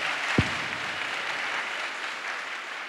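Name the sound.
audience applauding graduates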